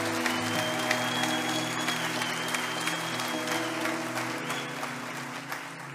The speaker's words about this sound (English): and you guys can clap for her as she comes if you don't mind.